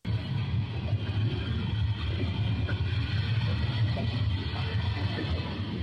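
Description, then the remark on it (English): A train on fire rolls through a small town in Ohio with a steady, heavy low rumble and broad mechanical noise, continuous for several seconds, with no voices. “Apparently, you could see the train on fire.”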